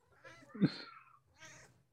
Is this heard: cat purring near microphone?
yes